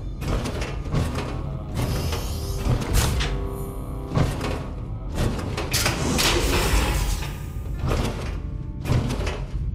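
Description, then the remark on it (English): A heavy mechanical door grinds and slides open, with loud whirring bursts, clanks and thuds repeating over several seconds, without any voices. “There's nothing for you behind this door.”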